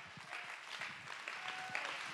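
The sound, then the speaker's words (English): A church audience stands and claps hands to praise God, a dense, steady patter of many overlapping claps, bright and fairly loud, with no voices standing out. “Stand to your feet and clap your hands and give God the praise.”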